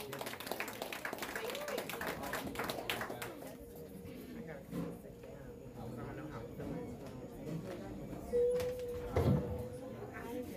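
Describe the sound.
An audience breaks into dense applause for about three seconds, then the clapping thins out into a murmur of crowd voices and a few scattered claps.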